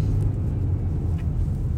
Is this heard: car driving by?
yes